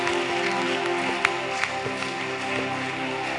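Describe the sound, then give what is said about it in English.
A crowd at a prayer service claps together over a steady wash of sustained music, with a few sharper, louder claps standing out above the continuous patter of hands. “Clap your hands and give God somebody.”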